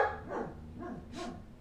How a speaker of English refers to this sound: A couple of minutes of straight dog barking. She'll get tired. She'll stop.